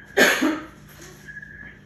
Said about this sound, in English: Well, I'm a week past it, but, you know, I mean, I have been able to get out and about, but the lingering of the cough is rough.